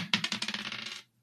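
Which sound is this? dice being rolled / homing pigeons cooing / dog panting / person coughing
dice being rolled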